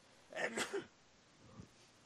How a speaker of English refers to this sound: I'm sorry, I had to sneeze. I apologize.